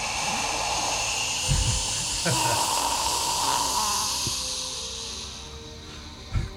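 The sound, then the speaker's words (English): A person makes a sustained, breathy hissing roar with their voice, imitating a rush of fire being breathed out, steady for several seconds before tapering off, with a couple of soft thumps. “So you breathe fire and...”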